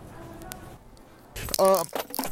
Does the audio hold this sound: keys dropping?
yes